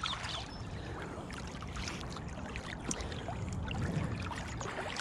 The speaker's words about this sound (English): And after work, swim not, 5 minutes off the bottom of the M3? Absolutely lovely. Check this out. Boats and no traffic.